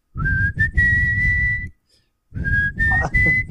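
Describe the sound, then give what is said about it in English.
Someone whistles a slow song melody, holding long steady notes in two phrases separated by a brief pause, with breathy low rumble underneath. “Have you ever heard that … song called …? I have not. It has like a whistle.”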